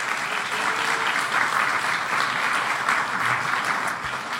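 A crowd applauds steadily, a dense wash of many hands clapping at an even, sustained loudness for several seconds, easing slightly toward the end.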